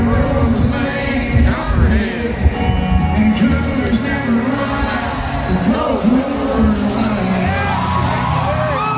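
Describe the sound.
A large crowd at a live country music concert roars and cheers loudly and continuously as the beer name in the song is changed to Coors Light, with overlapping shouts and voices blending into a dense wall of noise throughout.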